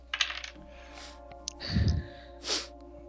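Dice roll onto a table during a tabletop game, landing on two ones: a quick burst of small hard clicks and rattles, followed by a soft low thump and a brief breathy hiss, with no talking.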